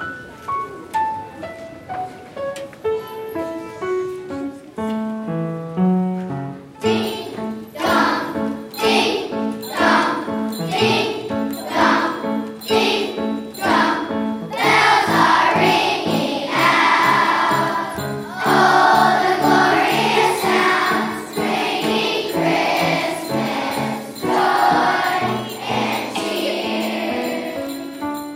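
A bright, bouncy song with a tinkling, bell-like intro that swells into a full, upbeat arrangement with steady jingling percussion and a catchy repeating melody, playing loudly throughout with no talking.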